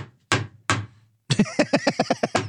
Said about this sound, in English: The clipboard slamming.